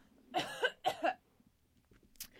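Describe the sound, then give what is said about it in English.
Two quick bursts of coughing, each with a couple of harsh hacks, sounding muffled, followed by near silence with a faint rustle. A person coughs away from the microphone after swallowing wrong. “And I swallowed wrong, and now I just have to cough.”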